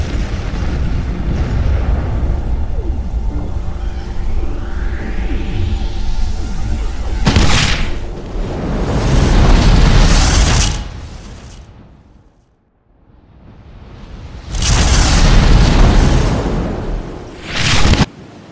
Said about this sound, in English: I have the explosives from Hakuto. I'll wait until you're off the ship to detonate them.